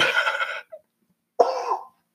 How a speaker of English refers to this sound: I have a dry cough.